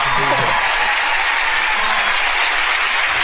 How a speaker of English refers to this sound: I don't know if they're applauding God, the power of prayer. It's unclear at this point.